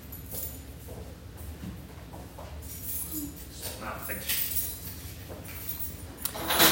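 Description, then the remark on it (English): A bunch of keys jingles and clinks in several short, bright bursts as it is handed over from hand to hand, with faint voices murmuring underneath. “You need keys?”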